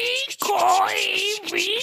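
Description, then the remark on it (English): A voice imitates a creaking ship rudder with drawn-out, wavering moans that bend up and down in pitch, broken by a brief gasp, loud and sustained for about two seconds. “I'll and do the rudder creaking and you do the loops. Rattling.”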